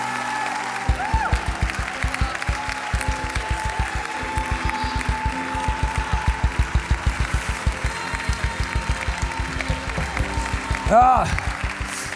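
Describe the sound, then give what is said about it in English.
A large crowd claps continuously in celebration in a rapid, steady rhythm, loud, with voices calling out over the applause and a brief swell of cheering near the end. “Oh, 30 seconds, clap your hands and celebrate, celebrate, celebrate.”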